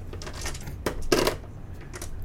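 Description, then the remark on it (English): Sharp plastic clicks from a pen button used as a fidget toy, then a short clattering rattle of dice being played with, two quick bursts standing out over a faint steady hum with no talking. “Fidget toys do not work well with microphones, as the ink pin clackings and the dice dice playing indicate.”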